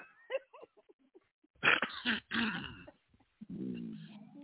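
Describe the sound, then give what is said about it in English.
Someone clears their throat loudly in a few harsh, rasping bursts, with soft murmurs before and a drawn-out voiced sound trailing after. “Let me clear my throat.”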